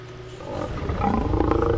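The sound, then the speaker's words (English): A deep, growling fire-dragon roar rises in loudness and holds, rough and rumbling with harmonic bellowing tones, like a dragon sound effect; no one speaks. “Okay, here comes the fire dragon.”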